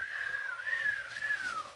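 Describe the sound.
A voice imitates whistling wind, blowing one long, wavering whistle that rises and dips gently before trailing off, steady and fairly soft, with a faint breathy hiss underneath.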